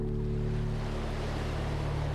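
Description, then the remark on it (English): A steady, continuous roar of ocean surf on a beach fills the background, a broad wash of waves with no distinct breaks and no voices, holding at an even moderate level throughout. “Maybe you can even hear the waves through your breath.”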